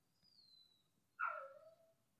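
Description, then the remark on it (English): A golden retriever named Kiwi, a roommate's dog, whines softly, a faint high thin whimper first, then a longer, lower whine sliding downward in pitch, with no talking, ending in a brief click. “Her name is Kiwi, and she's a sweet little golden retriever. She's just doing a little wine sesh, you know.”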